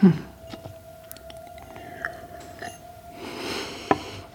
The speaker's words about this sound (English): Just relax. Have another sip of water.